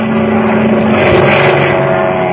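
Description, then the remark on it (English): A seaplane's engine roars during a takeoff from water, a loud, steady roar with a deep droning hum and strong harmonic tones, holding at full power throughout with a slight swell in the middle, no voices. “Remember now, son, pull back on that stick to start the takeoff. You've got to get her up on the step or she won't move.”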